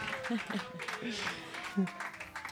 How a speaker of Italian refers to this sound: questo è l'applauso di una Cosetta.